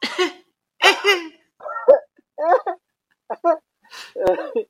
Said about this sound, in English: That little cough, I don't know anyone who can replicate that cough. It is insane.